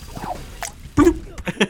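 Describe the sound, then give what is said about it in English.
A few wet plops, like small objects dropping into water, sound in an irregular sequence; a louder, fuller splash lands midway, with lighter drips after it. “How the like dropping into water sound.”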